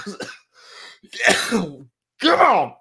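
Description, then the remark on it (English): A man coughs and clears his throat in several harsh, raspy bursts while reading aloud, with strained, groaning vocal sounds between them, like a short coughing fit. “Like you don't cough now. The rest of the time.”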